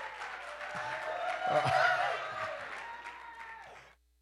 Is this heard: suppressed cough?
no